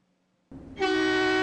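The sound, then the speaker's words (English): After a brief quiet moment, a loud, brassy freight train horn blares in abruptly and holds one steady, sustained blast until the sound cuts off. “She likes a freight train horn.”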